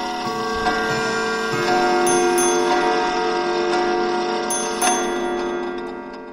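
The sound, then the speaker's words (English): A dense clamor of every bell in a house ringing together, loud and sustained, with fresh strikes cutting in now and then over a shimmering wash of overlapping metallic tones. “Soon it rang out loudly, and so did every bell in the house.”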